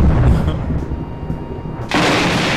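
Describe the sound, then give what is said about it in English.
A loud, rumbling thunder crash sound effect introducing a quiz lightning round, with a deep roll that swells into a sudden bright burst of crackling noise near the end, forceful. “So that is going to bring us to, I think, our first lightning round of the evening.”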